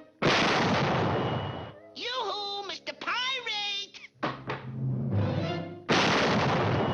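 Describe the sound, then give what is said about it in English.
A cartoon cannon on a ship, in the Bugs Bunny cartoon Buccaneer Bunny, fires with a loud, roaring blast and blows up in Sam's face, followed by a stretch of excited, wordless cartoon voice sounds, then a second booming explosion at the end. “And he always surprises Sam by, like, there's a cannon there. And it blows up in his face.”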